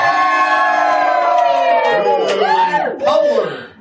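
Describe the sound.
A live studio audience of fans, many of them kids from Atlanta, cheering loudly and continuously for a musician, many overlapping voices whooping and hollering with rising and falling pitches, the noise dipping briefly before surging again.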